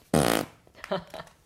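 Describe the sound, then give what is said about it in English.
A single loud, buzzy raspberry imitating a fart, made with the mouth and lasting a fraction of a second, followed by quieter, indistinct voices in the background. “Toot, crack, pop, honk, squeak, fart.”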